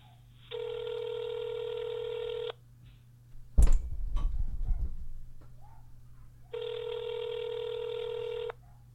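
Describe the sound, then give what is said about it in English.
Telephone line tones of an outgoing phone call sound in two long, steady electronic beeps about two seconds each, separated by a gap holding a brief clunk and rustle, over a low constant hum. “I'm going to give him a call real quick, and we're going to talk to him about it.”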